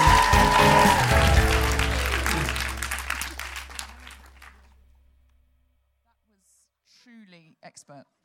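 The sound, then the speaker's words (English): An audience claps and cheers loudly, a dense patter of many hands that gradually fades away over about five seconds; after a short silence, a voice begins speaking. “I mean, I'm a feminist, but I incorporated a slut drop into the applause wrangling.”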